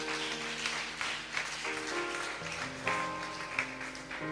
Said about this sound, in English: Now, can we clap to Jesus for that?